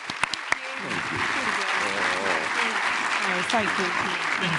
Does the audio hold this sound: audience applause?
yes